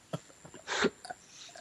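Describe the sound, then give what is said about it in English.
A single quick sneeze bursts out in the middle of a quiet moment, moderately loud, with a few soft clicks and breaths around it. “Bless you.”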